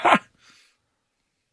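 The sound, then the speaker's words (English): A single quick, sharp sneeze, with a sudden burst followed by a softer breathy tail before silence. “God bless you.”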